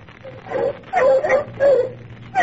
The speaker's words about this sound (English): I am going to get some bloodhounds.